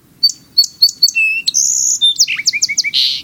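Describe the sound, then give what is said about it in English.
A song sparrow sings alone: a few sharp opening notes, then a buzzy trill, a rapid run of chirps, and a final burst of buzzy notes. “It puts forth a cascade of trills and notes as if singing a duet with itself.”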